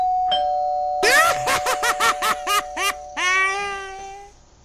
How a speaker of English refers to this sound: Let's ring the doorbell. I mean, it's the only polite thing to do.